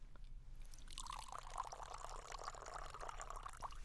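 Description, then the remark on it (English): Water pours steadily into a glass for a few seconds, a continuous splashing stream over a low background hum, with no one speaking. “Okay, and while you're drinking that water, I am just going to finish up on the stove here.”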